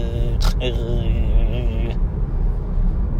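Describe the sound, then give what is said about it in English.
A voice imitates an idling car engine with a steady, slightly wavering hum lasting over a second, fairly loud over a low background rumble. “And, just him idling like a car.”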